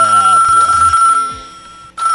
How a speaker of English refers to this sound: You know, every Saturday morning we give you 3 hours of music, a little bit of reggae, a little bit of dance hall, and then all of a sudden my phone starts to ring.